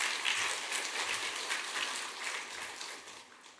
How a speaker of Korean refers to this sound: 우리 한번 힘주시도록 박수로 환영하면 좋겠습니다.